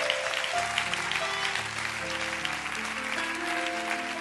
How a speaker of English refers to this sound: Clap your hands all over the house. Clap your hands.